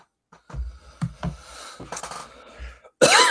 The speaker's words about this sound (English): Sorry, I was paying attention, but I coughed there, so I blacked out.